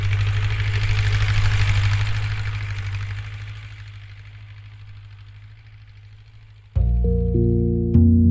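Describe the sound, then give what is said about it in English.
A tractor plough's huge metal blade slices through soil, flipping it upside down and smashing it up, over a steady low engine drone; the gritty rushing noise gradually fades, and near the end sustained musical tones abruptly take over. “Now, watch as a huge metal blade slices through it, flips it upside down, and smashes it up.”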